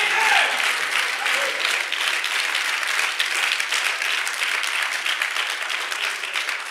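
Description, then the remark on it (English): A church audience claps their hands steadily for several seconds, a dense, continuous patter of many overlapping claps at an even loudness with no voices standing out. “We can clap our hands and go, you devil, you are a liar again.”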